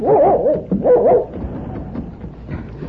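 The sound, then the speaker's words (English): A collie named Rover gives a few loud, pitched barks and yelps in quick succession, then trails off into softer whining and whimpering. “Oh, good for Rover.”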